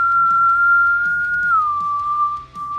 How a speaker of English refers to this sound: And that is going to bring up this Shade's turn, which is going to jump up into the air and get that whistling flight.